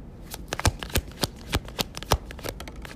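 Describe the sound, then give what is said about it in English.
Tarot cards are shuffled in a quick, uneven flurry of crisp papery snaps and riffles, with a few louder slaps standing out. There is no talking. “All right, we got the Five of Swords, the Knight of Wands, and the Ace of Cups.”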